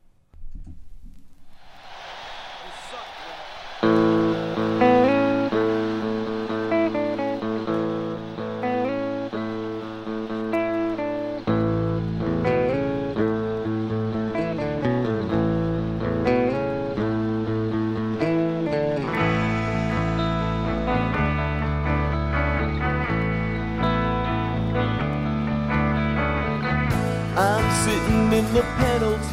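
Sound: song playing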